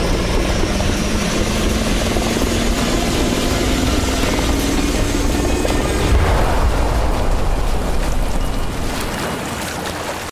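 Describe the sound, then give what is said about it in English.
A loud, steady helicopter roar with a whining engine tone, then a deep rumbling blast as the helicopter explodes about two-thirds through, the noise thickening and slowly fading out. No one speaks. “Helicopter explosion.”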